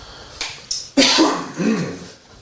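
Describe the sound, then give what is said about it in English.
A single cough from across the room, picked up by another person's microphone, sounding somewhat distant and roomy, a harsh burst that trails off, with a couple of faint clicks just before it and no talking. “I just coughed from across the room into your mic.”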